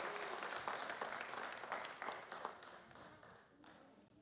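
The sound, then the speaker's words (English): An audience applauds the children as they go downstairs, with steady, dense clapping that holds for several seconds, then gradually thins and softens toward the end, with a faint murmur of voices underneath. “Now let's give our kids a hand clap as they go downstairs.”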